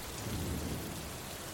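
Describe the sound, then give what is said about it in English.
Steady rain hisses across the whole moment while a low, rolling thunder rumble swells briefly and fades beneath it, with no voices present. “A thunderstorm.”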